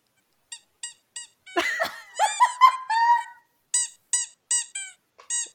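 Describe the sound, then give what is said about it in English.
A squeaky chew toy squeaks in short, high-pitched bursts, then a flurry of longer, wavering squeals before a few more quick squeaks. No one speaks. “Somebody actually cut together Oscar being, like, trampled with a squeaky toy noise.”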